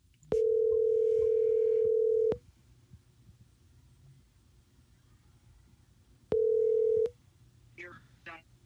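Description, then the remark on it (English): After a phone call is cut off, a loud, steady phone line tone sounds for about two seconds, falls silent, then returns briefly for a second burst. A faint voice murmurs just after. “Hey, yeah, we got cut off somehow.”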